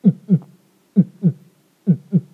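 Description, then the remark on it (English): Three paired low thumps in a steady lub-dub pattern, a heartbeat noise made for dramatic effect, each double beat separated by a short silence, fairly loud with no talking. “No, that was a heartbeat noise. It was for dramatic effect.”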